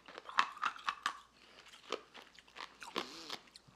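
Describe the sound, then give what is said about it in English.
Crisp crunching as a piece of ice is bitten and chewed, a rapid series of sharp cracks at first, then slower, scattered crunches and grinding bites with no talking. “But now I got a piece of ice, and I don't want to break the ice into the mic.”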